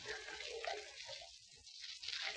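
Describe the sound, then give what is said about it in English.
Soft, irregular splashing as a woman washes her face and hands in a water pail, a continuous faint sloshing and dripping texture with no voices present. “Washing her face and hands in the water pail.”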